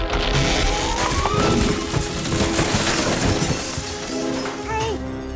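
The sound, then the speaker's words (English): A wooden treehouse crashes to the ground in a loud, sustained clatter of splintering and breaking, with creaking groans rising through the tumbling debris for several seconds. “Hey, guys, your treehouse has crashed to the ground.”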